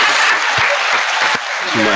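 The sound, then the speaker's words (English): A crowd claps steadily for about two seconds, a dense, loud wash of many hands with a voice briefly audible underneath near the end. “Can I get some claps?”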